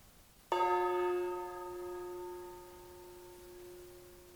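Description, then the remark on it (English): A gong is struck once, clear, its bright metallic tone ringing out and slowly fading over several seconds. “And so I'm going to sound our gong.”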